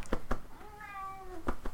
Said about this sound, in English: My cat's also talking to me right now. Come here, Jay. Jibber, want up?